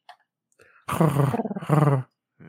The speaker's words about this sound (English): Yeah, you hear the pigeon.